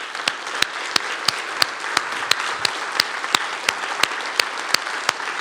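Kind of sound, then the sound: crowd, audience clapping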